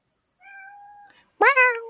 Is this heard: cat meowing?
yes